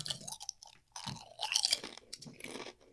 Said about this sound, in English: Fucking, I hate that crunch. It's got good crunch, though.